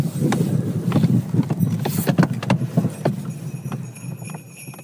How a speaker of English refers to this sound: Just listen. We're literally dashing through the snow in a one-horse open sleigh. That's true. Through the fields, snowy fields of Norway. You hear the horse bells?